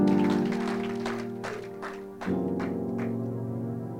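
A church audience claps in a steady rhythm for a church member, about two claps per second, over loud sustained keyboard chords that shift partway through. Nobody speaks.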